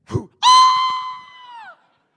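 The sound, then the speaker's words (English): A voice imitates a man's loud, high-pitched scream as he goes down a wall: one sustained shrill wail lasting over a second that sags in pitch as it fades, preceded by a brief low grunt. “If my dad is screaming like a three-year-old girl, like, I am in so much trouble.”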